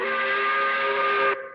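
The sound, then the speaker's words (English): A single loud, sustained steam whistle blast, the 5 o'clock whistle marking the end of the work week, with steady harmonic tones, held for over a second before cutting off abruptly, leaving a brief fading tail. “I said, blowing that 5 o'clock whistle?”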